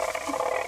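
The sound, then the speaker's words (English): A quick burst of ratchet rattle, a dense buzzy clatter of rapid clicks holding at a steady, fairly loud level for under a second, with no voices. “A ratchet.”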